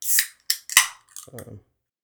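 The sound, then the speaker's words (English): A soda can opens: a few short hissing bursts and a sharp metallic crack as the tab pops, followed by a brief murmur from a voice. “I heard that soda opening.”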